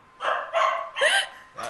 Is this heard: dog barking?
yes